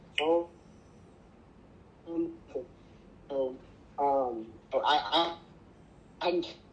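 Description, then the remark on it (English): A voice over a phone line comes through in short, choppy fragments separated by gaps of hiss, as if the connection keeps cutting out mid-sentence. “We're losing you.”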